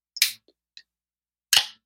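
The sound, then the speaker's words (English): A bottle of Sunita's Black IPA, a beer from Boulder, being opened: two sharp, bright pops about a second apart, each trailing off in a short hiss, with a few faint clicks between them and no talking. “So I am actually drinking a Sunita's Black IPA.”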